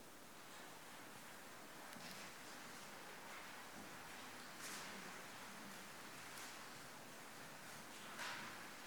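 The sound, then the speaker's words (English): A soft, continuous rustle of many pages being turned at once as people leaf through to Mark chapter 2, page 837, with a few slightly louder flicks standing out; no one speaks. “Oh, I do love the sound of rustling leaves or hubbub of noise.”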